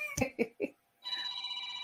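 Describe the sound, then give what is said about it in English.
A phone's ringtone starts up partway through, a steady, bright electronic trill that keeps going to the end, just after a few short vocal sounds. “Who's getting a phone call?”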